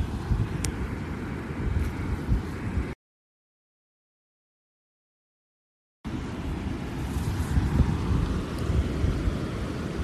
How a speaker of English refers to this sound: So here I am, still sitting in the sand, sitting in the shade in my little tent next to the ocean.